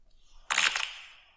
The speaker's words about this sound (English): Next fart.